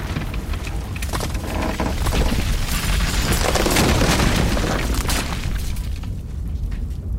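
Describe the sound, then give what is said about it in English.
A roof collapses in a long, loud rumbling crash, with deep booming low end and dense cracking, shattering debris spread across the whole stretch before it thins out at the end. “The roof is caving!”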